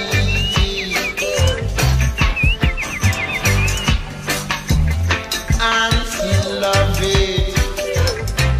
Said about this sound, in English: Birds.